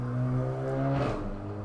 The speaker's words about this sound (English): That was Sirius on his motorbike. That was Sirius on his motorbike being like, hell yeah, justice for Sirius.